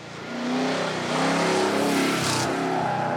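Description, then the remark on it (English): A car engine revs hard on an autocross course laid out with traffic cones in a paved lot in the Okanagan, its pitch climbing and dipping over a few seconds of sustained, loud driving, with a brief hiss of tires near the end. “The motorsport uses traffic cones in a paved lot to produce a small course for competitive events.”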